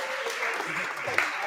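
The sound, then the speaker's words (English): An audience claps steadily for a second and a half, a dense, even patter of many hands with a faint murmur of voices underneath. “All right, clap it up. Show them some love.”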